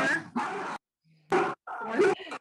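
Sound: dog barking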